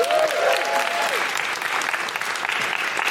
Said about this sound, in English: Big round of applause for Gina.